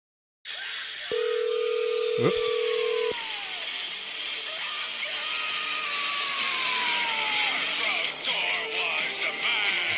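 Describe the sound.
A bright, continuous electronic ringtone plays throughout, with a steady tone and sliding, swooping melodic lines over a dense high-pitched wash, while a voice briefly exclaims near the start.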